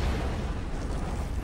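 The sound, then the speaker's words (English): Loud, continuous explosive roar with a deep booming low end, like blasts and debris rumbling together in a battle scene from a film, filling the whole moment without any clear gaps or voices. “There are a lot of explosions for two people blending in.”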